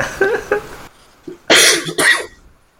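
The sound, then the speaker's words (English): A man does a comedic coughing impression: a few loud coughs, two muffled, throaty ones first, then after a short pause a pair of harsh, explosive barks in quick succession, with nobody speaking. “doing his Who Wants to Be a Millionaire impression by coughing over”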